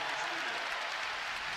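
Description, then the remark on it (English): Sustained applause and cheering from a large Rutgers home crowd in a basketball arena, an early ovation for a player being substituted out: a dense steady wash of clapping that holds evenly throughout, with a commentator's voice faintly underneath. “Ron Harper Jr. checks in for Montez Mathis, who gets an early ovation from this Rutgers crowd”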